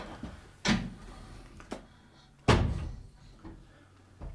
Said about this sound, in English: Shut up and close the door.